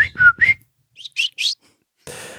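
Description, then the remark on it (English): A person whistles a quick series of bird-like chirps imitating the sound of sending a tweet: three sliding tweets followed by a few higher, breathier peeps, fairly loud, imitating a small bird, ending in a brief burst of hiss. “Sending a tweet. I mean, I would assume it's like a bird, like.”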